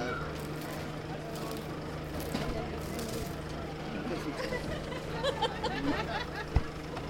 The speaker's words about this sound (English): So I can hear some street sweepers sweeping up the street. I can hear the motor of the trash truck back there. Did you want to listen to the sweeping?